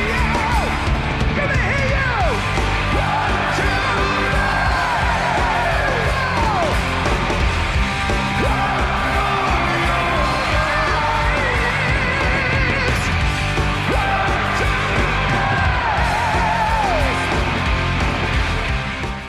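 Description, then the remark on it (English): A loud live concert where a crowd yells and cheers over the band, voices rising and sliding above steady drums and amplified music for the whole stretch. “I was hoping we'd listen to the crowd though.”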